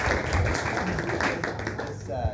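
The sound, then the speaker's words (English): A burst of dense, steady applause for everybody getting involved, many hands clapping at once in a continuous loud wash, with some voices mixed into the noise. “So yeah, big round of applause to everybody getting involved.”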